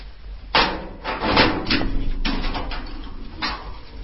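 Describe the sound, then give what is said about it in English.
An exit door at the top of a second flight of steps is unlocked and opened out into the rain: a string of sharp clunks and rattling knocks, several loud bursts spread over a few seconds, with no voices. “Let's come up the second flight of steps, and once we get to the top, turn left, and there's the exit door. So let me unlock that.”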